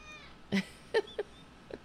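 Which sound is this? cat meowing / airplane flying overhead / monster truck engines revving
cat meowing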